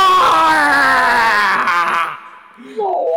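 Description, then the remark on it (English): A voice imitates a man and his wife screaming: a loud, strained, wavering wail that holds for about two seconds and then breaks off, followed by a brief, quieter vocal squeak. “Him and his wife are just screaming.”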